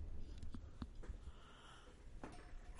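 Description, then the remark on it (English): A long, breathy yawn drawn out over a couple of seconds, fairly quiet, with soft airy exhalation and a few brief sniffs and mouth sounds around it. No speech. “As I yawn. Big fat yawn there.”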